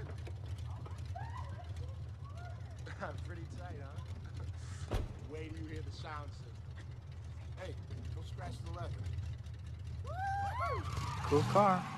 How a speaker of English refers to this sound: Car.